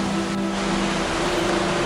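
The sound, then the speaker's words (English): Steady, full wash of ocean surf moving in and out at a rocky jetty, hissing across the whole range at a constant level, with a low droning hum running underneath and no voices. “The waves move in and out.”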